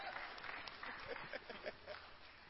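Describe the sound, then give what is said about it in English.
A church audience at Christ's Way Tabernacle claps together in a steady, dense burst of applause as they take their seats to receive the pastor, with faint voices mixed into the clatter. “Shall we please take our seats as we clap to receive”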